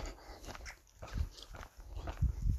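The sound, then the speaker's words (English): A dog growls and snarls in short, low rumbling bursts, apparently at another dog behind a fence, several outbursts over a couple of seconds, moderately loud, with no one talking. “And then just turned a bit fuming at presumably another dog behind a fence.”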